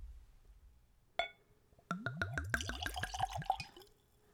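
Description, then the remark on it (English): A single glassy clink, then an anise, black licorice flavored liquor glugs and splashes neat into a small Glencairn tasting glass in a quick run of bubbling gurgles lasting about two seconds, fairly clear, with no talking. “So let's go for a pour.”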